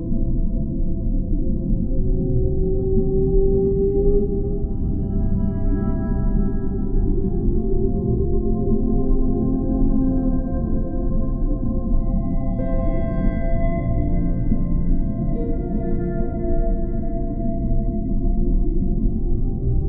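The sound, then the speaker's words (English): Long, moaning whale calls with layered harmonic tones drift and shift slowly over a steady, deep underwater rumble, continuing without pause and with no voices. “Imagine yourself touching her, this gorgeous whale.”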